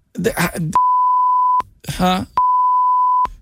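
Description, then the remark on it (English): Two loud, steady censor bleeps, each under a second long, cut in sharply after short bursts of talking, blotting out a spoken name. “There's going to be so many beeps in this.”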